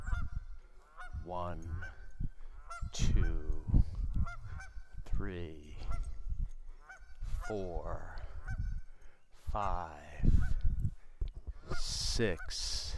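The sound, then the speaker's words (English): A pair of adult geese with seven goslings honks repeatedly, loud nasal calls coming in irregular bursts and sometimes overlapping, with higher, thinner calls from the young birds mixed in toward the end. “Mama and Papa Geese. With their goslings in tow.”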